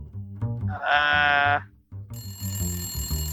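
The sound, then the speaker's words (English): An office telephone at the Stormwood & Associates office rings twice in close succession: a bright, buzzing electronic trill followed by a higher, sustained ring, both loud over a low rumbling background, with no one speaking. “The phone rings several times. As the phone continues to ring, the ID saying, "What's your dad's first name?"”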